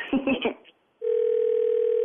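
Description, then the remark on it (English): After a few brief muffled bursts and a pause, a steady electronic telephone tone starts and holds unbroken, the ringing of an outgoing call heard through the line, clear and fairly loud. “Okay, don't answer it, and we'll call him right back with you on the phone.”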